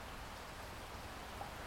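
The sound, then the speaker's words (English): Steady rain falls continuously, a soft, even hiss of drops spread across the whole stretch with no pauses, fairly quiet and diffuse. “It sounds like it's raining where you are.”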